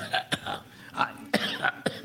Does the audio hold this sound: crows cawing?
no